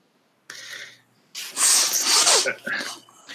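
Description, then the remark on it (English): A single loud sneeze: a short breathy intake, a brief pause, then a forceful explosive burst that trails off into a wet, sniffly exhale. “Go blow your nose.”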